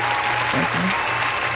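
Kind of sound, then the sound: crowd, round of applause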